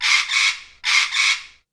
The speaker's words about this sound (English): So, what's that sound? A parrot! A parrot.